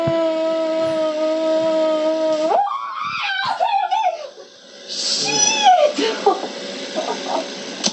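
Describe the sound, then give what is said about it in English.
A person in a video lets out a long, steady, high-pitched scream that breaks after a few seconds into wavering, sliding cries and yelps, loud throughout. “You can hear the scream.”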